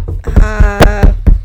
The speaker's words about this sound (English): You jinxed it now. Find some wood to knock on.